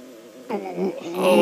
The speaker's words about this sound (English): Uncomfortable fart. Here comes a very uncomfortable fart. Oh, here it is.